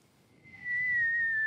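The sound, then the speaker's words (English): A single sustained whistle, steady and fairly loud, that slowly glides downward in pitch like a falling bomb, someone imitating the sound with their lips. “Stop whistling, you fucking loser.”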